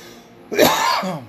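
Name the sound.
cough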